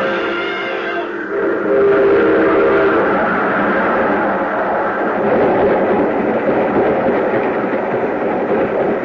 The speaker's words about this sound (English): There's a train coming. There he goes. He's going to try to beat it.